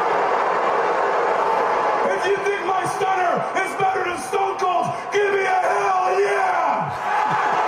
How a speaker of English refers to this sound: Come on, fans. You're booing the shit out of him.